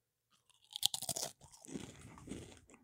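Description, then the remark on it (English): A loud crunch as a Dorito tortilla chip is bitten, followed by a couple of seconds of steady, muffled chewing with smaller crackles; no one speaks. “He's chewing the chip.”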